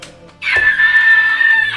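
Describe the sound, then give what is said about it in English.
A person lets out a loud, harsh, sustained screech lasting over a second, imitating a beaked creature that braces itself, looks up and opens its beak to screech. The sound is piercing, with no talking. “It kind of, like, braces itself, and it looks up at you, and it opens its beak, and it screeches.”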